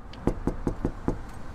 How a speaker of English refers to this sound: That evening, I knock on her door.